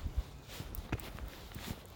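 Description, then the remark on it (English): Soft, irregular hoof thuds of a horse clop along a coastal path at a moderate pace, fairly quiet, with low outdoor rumble beneath and no voices. “It's usually the route, although I've got to navigate past this horse, which is a bit of a pain because I don't know what to do.”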